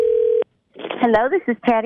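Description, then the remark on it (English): A single steady electronic telephone tone sounds for under half a second as a call is placed for a radio prank call on My 1027, cuts off sharply, and after a brief silence a person begins speaking. “I'm giving you a call.”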